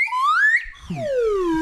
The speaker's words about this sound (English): It's like an entire symphony of slide whistle is pre-written in his head, and he's just taking dictation.